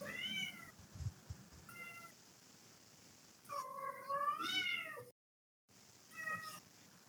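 Someone else's cat meows four times, fairly loud, with short calls at first and one long, drawn-out, wavering meow in the middle, separated by brief pauses.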